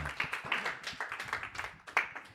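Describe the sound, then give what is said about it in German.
An audience breaks into applause as a participant is called to the front: a dense, steady patter of many hands clapping at once, with a few sharper, louder claps standing out near the end. “Zu mir nach vorne mit einem extra Applaus kommt”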